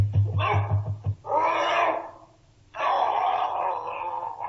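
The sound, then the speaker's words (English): The dog Carlo, in a Sherlock Holmes drama, barks in a quick, rhythmic burst, then breaks into long, harsh snarls and growls as it attacks Mr. Rucastle. It sounds loud, with no talking. “Rucastle, let loose the dog. He'll get him.”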